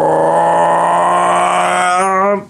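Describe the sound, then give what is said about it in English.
A voice imitates a V-twin motorcycle engine revving, on a bike said to produce about 40 horsepower: a loud, sustained buzzing hum that holds steady, climbs slightly and wobbles toward the end, then cuts off after about two and a half seconds. “So what happens is you rev this thing, and it doesn't rev like rum, which would be like asking a lot of a V-twin.”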